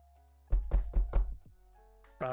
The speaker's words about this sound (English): You knock on the door